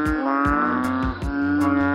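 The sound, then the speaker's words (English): A banded bullfrog's loud, cattle-like bellowing call: a steady, buzzy drone rich in harmonics, pulsing with a rough, regular beat for the full two seconds, with no talking. “I've seen that call referred to as a cattle-like bellow.”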